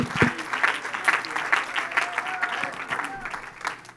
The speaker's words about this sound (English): In Jesus' name, can you clap your hands one more time and give him praise?